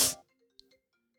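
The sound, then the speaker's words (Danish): A brief outgoing phone ringing tone, opening with a short loud burst and then a faint, thin tone with a couple of soft clicks, heard alone without any voices. “Skal vi prøve at bare ringe? Nu no. Shit. Nu ringer nu.”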